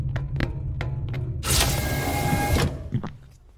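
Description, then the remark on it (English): A door slides open with a mechanical whoosh lasting about a second, a loud hissing rush with a faint whine, framed by a low hum and a few soft clicks before and after. “Here's the door.”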